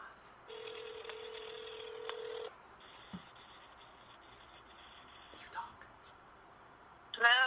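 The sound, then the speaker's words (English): A phone call to an old phone number over speakerphone: steady electronic dialing and ringing tones hum for several seconds, with faint clicks, before a voice suddenly picks up at the very end. “we're calling B. Arthur's old number”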